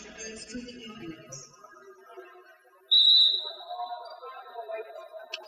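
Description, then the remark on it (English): A sharp, high referee's whistle sounds suddenly and holds for a few seconds, loud and piercing over the murmur of a gym crowd and faint background voices, during a Milan basketball game with Milan down 66-30 and the clock stopped at 2:50. “Whistle blows.”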